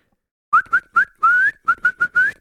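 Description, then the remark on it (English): A hunter in the woods whistles to get the attention of a man entering the woods, a quick series of about seven short, rising notes in an uneven rhythm, fairly loud, with no talking. “And so guy starts entering the woods there, and I whistle at him, right?”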